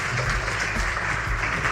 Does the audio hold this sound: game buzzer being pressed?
no